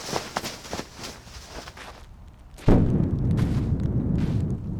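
Thunder from a brewing storm: scattered crackling bursts, then a sudden loud boom at about two and a half seconds that settles into a deep, sustained rolling rumble. No voices.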